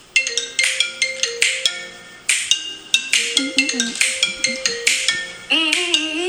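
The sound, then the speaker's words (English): An iPhone ringtone plays on its own, a bright, plucky melody of quick repeated notes in a steady bouncing rhythm, clear, with no voices. “How do you hear the iPhone ringtone?”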